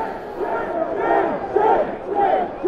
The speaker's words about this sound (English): And the crowd was screaming at them, shame, shame, shame.